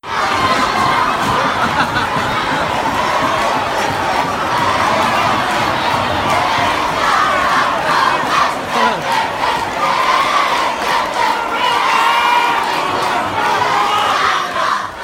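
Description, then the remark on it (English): The Junior Hoops, a youthful supporters' group, chant and cheer together while bouncing in the corner with green ribbons. It is a loud, sustained wall of high-pitched shouting voices that holds steady for the whole stretch with rhythmic surges. “The noise of these guys. Oh, it was gas. I think we have a bit of audio as well, don't we?”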